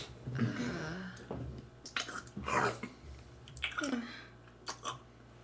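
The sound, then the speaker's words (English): Moist chewing of a piece of bread, with irregular crunchy bites and squishy mouth sounds spaced unevenly over a few seconds, against a faint low hum. “He chews as if he's drank fluoridated water.”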